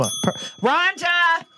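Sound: bell ding sound effect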